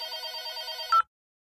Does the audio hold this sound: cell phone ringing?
yes